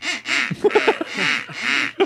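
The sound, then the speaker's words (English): A rapid series of loud, raspy duck quacks from a duck whistle, several bursts in quick succession with short stuttering calls between, prominent with no voices. “You don't think it's a real duck. That's not my point. You don't know what the fuck it is. Is it a sound effect? Is it someone with a duck whistle?”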